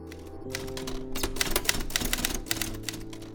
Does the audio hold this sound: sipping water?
no